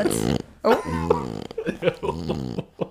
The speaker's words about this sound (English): It's such a weird sound to come from a dog. It sounds like we'll just let her sleep. It sounds like a fart, to be honest. That's normal.